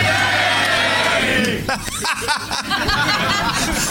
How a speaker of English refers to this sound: That's never happened before. A whole audience yelling hey back at me. It's great to be back here at Hyenas